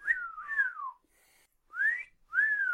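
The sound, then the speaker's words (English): A person gives a wolf whistle, a sharp rising note followed by a long falling glide, then repeats it after a short pause. The whistling is clear, with no talking. “I do want a wolf whistle at it.”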